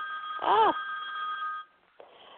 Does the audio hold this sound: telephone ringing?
yes